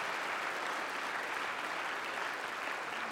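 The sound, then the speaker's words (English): A church audience claps steadily in a sustained round of applause welcoming people who come forward to follow Christ, a dense, even wash of many hands lasting the whole moment with no voices standing out. “Yes, you can give them a good round of applause and let's just welcome them and say, come.”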